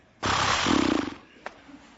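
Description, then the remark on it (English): A person mimics a horse's snort with one loud, breathy blast of air that turns into a low, fluttering lip sputter, trails off after about a second, then a small click. “What does a horse sound like when it snorts?”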